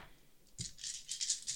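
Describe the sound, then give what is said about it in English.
Five dice, rolled for an investigate check in a tabletop role-playing game, clatter and rattle together, a sharp initial knock followed by a quick run of bright, scattered clicks that tumble on for about a second before settling. “That's 5 dice.”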